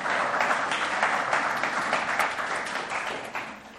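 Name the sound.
round of applause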